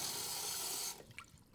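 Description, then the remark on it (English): A faucet gushes steadily into a sink, then is shut off partway through, leaving a few soft drips and trickles in the quiet. No one speaks. “I still try to turn on the faucet.”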